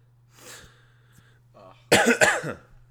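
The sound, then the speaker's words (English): Forceful coughing from laughing hard, to the point of gagging: a softer breathy cough, then two loud, harsh coughs in quick succession, rough and strained, over a low steady hum. “I just laughed and coughed so hard that I gagged.”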